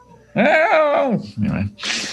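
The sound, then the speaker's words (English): A female cat lets out one loud, drawn-out meow, its pitch rising and then sliding down, followed by a shorter low sound and a burst of breathy noise. “She's meowing and stuff.”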